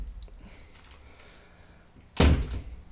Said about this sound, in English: Oh no. I've arranged another guest to come in. I'll just grab the door. Hang on a sec.